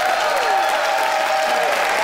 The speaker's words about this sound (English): Time to vote, Glenn Gould Studio, by applause.